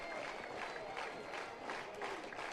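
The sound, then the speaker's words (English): A baseball crowd cheers and claps steadily, trying to pick up the Bulldogs in a game against the Cougars, a dense wash of voices and applause with rising swells of shouting, sustained throughout without a break. “You hear the crowd trying to pick up the Bulldogs.”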